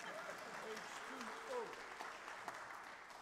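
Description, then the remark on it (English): A crowd claps in a steady, dense burst of applause, with a few faint voices murmuring underneath. “Abraham, clap. Ready? Someone was doing already.”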